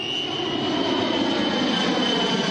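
vehicle, airplane flying overhead

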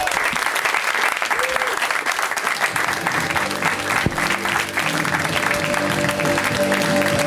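crowd, audience applause

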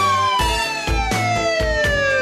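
signal or alarm, siren sound effect

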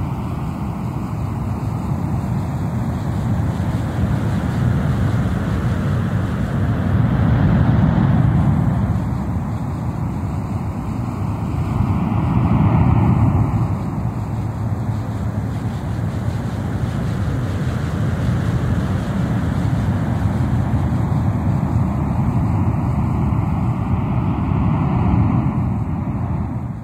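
nature, ocean surf waves

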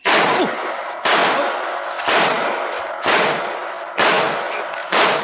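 sound effect, gunshot

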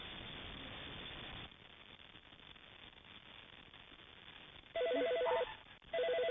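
household object, doorbell ringing

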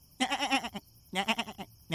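animal, goat bleating

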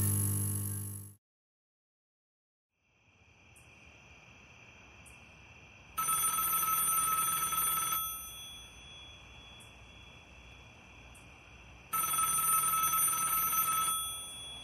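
household object, telephone ringing

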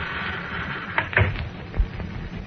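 household object, side door opening

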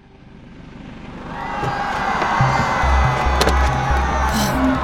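crowd, crowd noise

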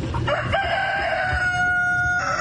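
bird, rooster crowing

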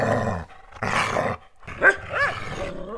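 animal, dog barking and growling

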